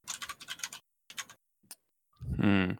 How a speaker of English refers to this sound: Are you changing the decal? Yeah, just clicking through the settings.